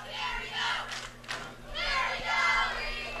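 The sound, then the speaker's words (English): A large football crowd chants in rhythmic, rising and falling waves, loud, with no clear speech on top, the chants led by the cheerleading squad. “Nice chants led by the cheerleading squad.”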